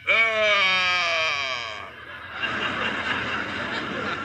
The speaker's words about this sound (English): He sees something behind that bush. Yeah. And so do I. I think I do, too. It's a lion. A lion. He's coming this way.